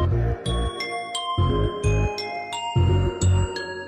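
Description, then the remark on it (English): Synthesized bell chimes programmed in a computer music program ring out in a steady repeating pattern, bright struck tones with long shimmering decay over a soft low pulse, smooth and slightly swirling with an added chorus effect. “I'm going to go to the velocity of all these bells.”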